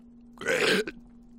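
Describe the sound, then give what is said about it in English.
A single loud burp lasting about half a second, rising abruptly out of a quiet background with a faint steady hum, then cutting off with a brief trailing catch. “At least I'm just doing mouth farts.”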